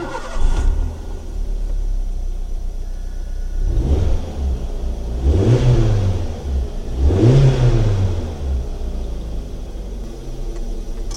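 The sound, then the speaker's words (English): A small 1-litre Toyota Yaris car engine idles with a steady low rumble, then is revved up sharply three times, each rev rising and falling in pitch, loud with no talking. “Sounds nice that, doesn't it? It's only a 1 litre Toyota Yaris.”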